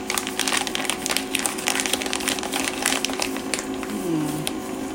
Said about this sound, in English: Anyway, here comes my noisy grinder coffee maker thingy.